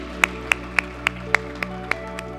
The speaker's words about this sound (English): Let's give all of our educators a hand clap and thank them with a hand for the work they're doing for us.